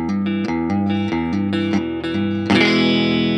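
A Gretsch Broadkaster electric guitar plays a quick run of repeated chords through distortion and effects, ending on a loud, ringing strummed chord that sustains with a bright, crunchy edge. No voices.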